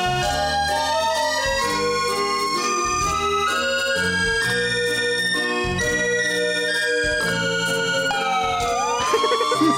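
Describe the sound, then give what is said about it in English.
A wailing emergency siren rises and falls within a dense, loud musical track, its pitch sweeping upward near the end, with no voices. “The siren cut in like mid-sample.”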